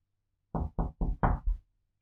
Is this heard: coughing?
no